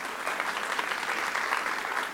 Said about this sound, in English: give him a warm round of applause as he comes up.